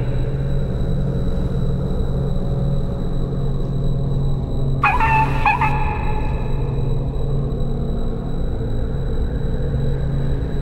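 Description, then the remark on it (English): An injured dog with hurt legs, down by a pond, gives one short, high-pitched whimper, under a second long, over a constant low engine-like rumble that fills the whole recording. No one speaks. “I thought I heard a dog crying.”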